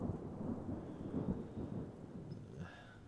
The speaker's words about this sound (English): I'm having trouble trying to see through this storm. That rain's coming down hard.